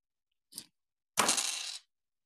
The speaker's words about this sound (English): Guys, that was me falling over